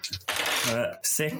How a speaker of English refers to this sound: Okay, so I'm going to roll 8 dice plus computer. Dice.